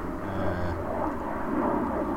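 A steady, broad engine roar of an airplane overhead fills the background, a continuous low drone with a faint whine, moderately loud and unbroken, with no voices, heard in quiet countryside by a farm road on a windless, cold day.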